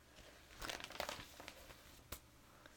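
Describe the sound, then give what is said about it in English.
Fairly quiet rustling and crinkling of the paper pages of a small walking guide booklet being handled and flipped to the next page, a cluster of crisp rustles in the middle and a sharper flick near the end, with no voices. “So would you flip to the next page?”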